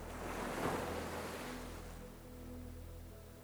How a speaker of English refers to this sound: The sound of the waves lapping on the beach